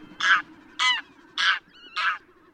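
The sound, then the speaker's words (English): A graylag goose honks four times, harsh, nasal calls evenly spaced about half a second apart, loud, with a faint low hum underneath and no talking. “The goose of today's farmyards was domesticated about 3,000 years ago from the Graylag goose, the wild goose species still found today throughout much of Europe and Asia.”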